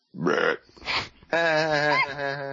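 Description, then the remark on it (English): Someone vocally imitates a belch: two short, rough bursts followed by a long, honking, croaky voiced drone, loud, with no words spoken. “Cracking it on his forehead, tossing it out the window, belching.”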